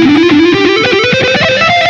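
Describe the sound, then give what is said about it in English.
A heavily distorted electric guitar rips through a quick, rising run of notes, loud and buzzy with sustain, played alone with no one talking. “But once I put that distortion on, it sounds”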